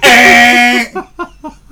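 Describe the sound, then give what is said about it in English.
A voice imitates a truck horn: one loud, nasal blare held for almost a second, then four short, quick honks in a row. “Horn, the whole way. Right? Why are you beeping?”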